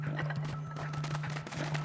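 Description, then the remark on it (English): Smashable ceramic pots in the video game Pikmin wiggle and rattle in a quick, steady series of hollow clattering knocks, moderately loud, over a constant low droning hum. “These ceramics are wiggling.”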